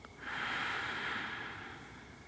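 A single long, slow exhale, a soft airy hiss that swells quickly and fades gradually over about two seconds, with no talking.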